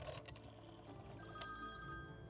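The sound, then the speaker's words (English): A dormitory telephone rings with a bright, sustained bell-like tone that settles in partway through, faint over a low background rumble, with no one speaking. “When he discovered her dorm phone number, he began calling her, recording their conversations.”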